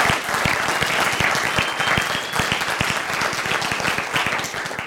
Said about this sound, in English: And so I want to publicly say thank you. And can we give them a round of applause? Yeah.